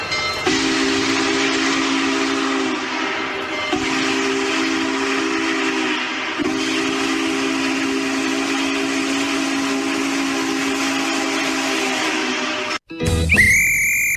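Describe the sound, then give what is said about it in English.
A loud steam train whistle blows three long, steady blasts over a continuous rushing hiss of steam, cutting off abruptly near the end into a brief, higher-pitched tone. “Let's see if we can finally get on board the groove train.”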